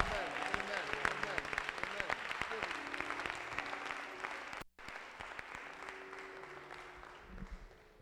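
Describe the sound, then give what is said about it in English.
An audience claps hands for the Lord during a sermon in dense, sustained applause, with a murmur of voices mixed in and a brief break midway before the clapping resumes. “If you believe it, clap your hands for the Lord.”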